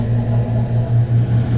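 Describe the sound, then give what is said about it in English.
An air conditioning unit kicks on with a steady low mechanical hum, a deep droning tone that pulses slightly in strength. No one speaks over it. “Okay, so you heard the air conditioning kind of kick on and destroy the mood that we had going.”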